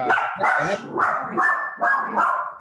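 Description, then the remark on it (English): A dog barks repeatedly in a quick series of four or five loud barks with short gaps between them, some with a slightly whiny, yipping edge. “Even the dog likes the idea.”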